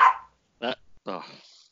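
A small female dog barks sharply three times in close succession, high-pitched, the last bark stretching into a longer, strained yelp.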